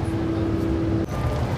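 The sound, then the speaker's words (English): Steady low rumble of a moving city bus interior, bus 5521 on route 70 or 79, at 11:54 a.m. Eastern Standard Time on August 4, 2023, with engine drone and road noise filling the space; a humming tone holds for a second, then drops away. “Bus identifier 5521 here, 70 or the 79, 11:54 a.m.”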